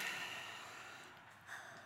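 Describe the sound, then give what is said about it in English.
A group takes a long, slow deep breath together, a soft airy hiss that swells and fades over about two seconds, quiet, with no talking. “Let's all take a deep breath together.”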